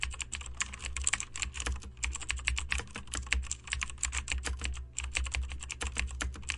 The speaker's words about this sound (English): We are going to go ahead and write this scene. So just enjoy the sound of us clicking keys, and we'll be back with a scene and possibly some thoughts on it very soon.